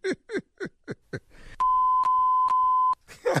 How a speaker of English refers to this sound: What was that last three beeps right there?